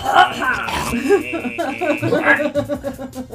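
A person clears their throat with a few rough, gravelly rasps, followed by a short hacking cough-like burst near the end.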